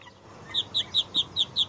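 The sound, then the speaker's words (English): Six short, high-pitched duck quacks from a sound effect in a quick, evenly spaced run, clear, with no voices or other sounds around them. “And I need more ducks. I need a mama duck in there too.”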